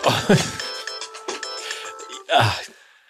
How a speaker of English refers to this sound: Do you want me to just keep going while you take this phone call?